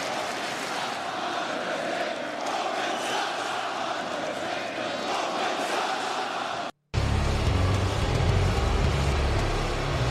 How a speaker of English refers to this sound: Every time he pulls the mic up, I think crowd gets louder. Yeah, so there he's pulling the mic up, and it just, yeah, that's. And this was an Orlando crowd? Yes.